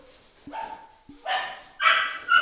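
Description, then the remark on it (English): A dog named Samarin barks three times in quick succession, sharp, fairly loud bursts with short gaps between them, with no one speaking during the barks. “The background noise is my dog, Samarin.”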